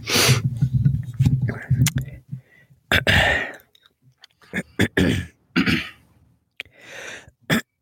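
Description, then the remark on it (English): A person with a frog in their throat clears it before starting, several times in rough, raspy bursts with short pauses between, followed by a few sharp clicks and a breathy exhale; no words are spoken. “Sorry, I always feel like I get a frog in my throat right before I'm about to start.”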